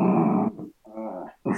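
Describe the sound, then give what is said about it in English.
A dog growls in three low, rumbling bursts, fairly loud, with short pauses between them and no talking. “And neither is Dan's dog, by the sound of it.”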